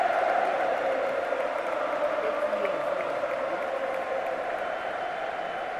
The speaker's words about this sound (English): And Fabio still getting the applause here. A beautiful moment in Calcio. Brings goosebumps to any football fan.